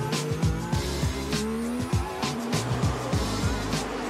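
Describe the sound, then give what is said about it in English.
Several race cars roar past, overtaking during the last few minutes of the first qualifying session (Q1), engines rising and falling in pitch as they shift and jostle for position, with a brief tire squeal amid the continuous loud engine noise. “I've got a video of it just to show how stressful and how much the drivers needed to get their elbows out.”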